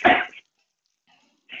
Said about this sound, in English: Dry cough, I know.